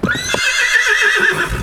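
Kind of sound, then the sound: sound effect, horse neigh sound effect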